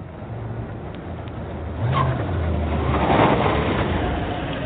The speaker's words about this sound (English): It's all quiet in the house on Juniper Avenue. Outside, a big silver car arrives.